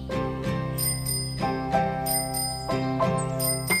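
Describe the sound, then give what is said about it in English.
A bicycle bell rings repeatedly in quick, bright metallic bursts, several rings close together and clearly audible, with a steady tonal backing underneath and no speech. “with a helmet on my head and shoes tied to my feet. I ring my bell.”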